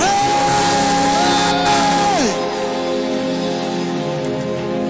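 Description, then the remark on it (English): A crowd erupts in loud, sustained shouting and cheering as a shout of praise to the Lord, with one high voice holding a long whoop above the roar before it slides down and the noise settles into a steady clamor. “Somebody give the Lord a shout of praise.”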